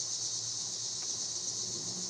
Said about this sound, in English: You hear that, cicada? Yeah, I'm about to punch it in the face. I would never do that. I would never harm a cicada.